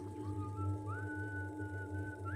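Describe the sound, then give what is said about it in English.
A sustained, wavering whistled tone glides upward and holds, steady and fairly clear over a low constant hum, with no one talking. “The whistling.”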